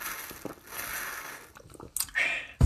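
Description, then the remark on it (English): Mouth sounds of someone sipping water: soft slurps and swallows, with a brief louder clunk at the end, and no talking. “Let me take a little bit of a sip of water, actually.”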